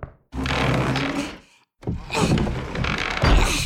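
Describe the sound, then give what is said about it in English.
Someone barricades a door: two long, loud bursts of heavy scraping and thumping, as if furniture is shoved into place, separated by a brief pause, with no talking. “I'm just gonna go barricade the door to, you know, keep the riffraff out.”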